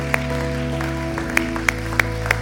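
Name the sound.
audience hand clapping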